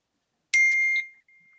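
A mobile phone left switched on during an interview rings with a short burst of bright electronic ringtone notes, about half a second long, then a thin steady tone lingers faintly before fading. No one speaks.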